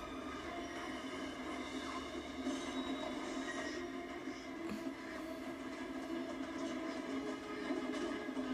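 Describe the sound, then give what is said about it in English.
A train rumbles along steadily, a loud continuous roar with a droning mechanical hum throughout, a faint clatter mixed in, and no one speaking. “Now I feel like we're in Pee-wee's Big Adventure with the whole train sequence, you know?”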